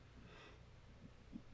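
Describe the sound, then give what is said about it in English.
A single soft yawn: a drawn-out breathy exhale with a faint nasal snort near the end, no talking. “I'm yawning a lot.”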